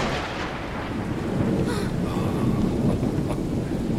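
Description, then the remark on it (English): Steady rain pours down while a deep, rolling rumble of thunder swells underneath, continuous and fairly loud throughout, with no voices. “Rain.”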